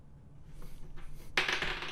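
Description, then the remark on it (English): Hard plastic 20-sided dice, rolled by two people to decide an order, clatter and tumble across a table, a few light taps building into a bright, busy rattle that continues fairly loud until the end. “to determine the order that we'll be talking about these different foods, we both roll 20-sided dice because we're both fans of role-playing games.”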